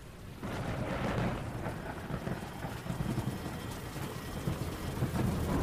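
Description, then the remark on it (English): Heavy rain pours steadily with a deep, rolling rumble of thunder throughout, a dense continuous wash of noise that stays loud, with no voices. “That night, it rained like nothing anyone had ever seen before.”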